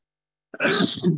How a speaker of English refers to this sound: I wish he'd stop making me sneeze and blow my nose, but okay. You can't have everything, I guess. Hold on.